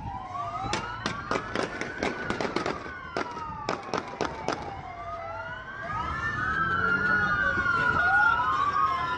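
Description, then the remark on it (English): A rapid string of about a dozen sharp gunshots rings out over wailing police sirens during a police car chase in which a police car hits a Mustang and other cars crash, then the shots stop while several sirens keep sweeping up and down, growing louder. “But, and all that gunfire.”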